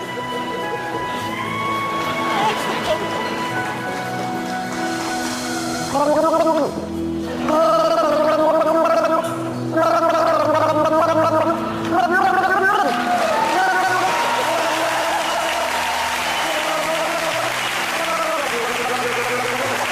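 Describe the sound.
A woman sings a wavering melody while gargling water, her voice bubbling and warbling over background music, with bursts of crowd noise and applause rising partway through.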